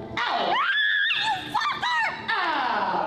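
A woman screams loudly, a string of shrill, wavering shrieks that rise and fall in pitch with only brief breaks, lasting a few seconds, during a deliverance prayer as a preacher commands a spirit to leave her body.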